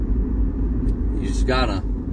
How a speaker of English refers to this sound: I'm in the car driving, taking the boys to school.